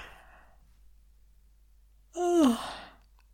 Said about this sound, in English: So if you're doing any intense voicing, e.g. long sessions, extreme character stuff, having a little yawn every now and then will help with vocal fatigue. We've done a little bit of that, haven't we? Should we do one now?